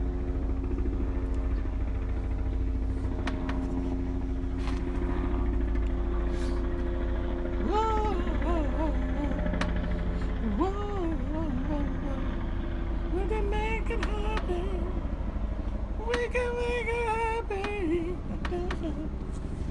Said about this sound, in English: I think it is a police helicopter, yes.